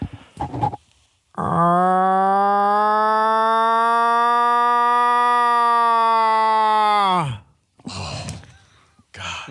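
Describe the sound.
A man imitates a cow hunting call with his voice: a single loud, nasal, drawn-out bellow held steady for about six seconds, then dropping off in a falling groan. Brief talk comes before and after.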